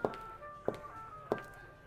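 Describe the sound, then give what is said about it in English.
Dishes knock and clink together at a steady pace while being washed, four distinct impacts about half a second apart, each leaving a faint ringing tone, fairly soft, with no voices. “I need to wash dishes to clear my head.”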